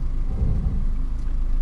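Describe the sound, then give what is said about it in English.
A car engine idles low and steady as the vehicle creeps slowly forward over a ramp with two wheels off the ground, then starts to go down, a continuous rumble with no voices. “Got two wheels off the ground at the moment. Now it's starting to go down, so keep it straight.”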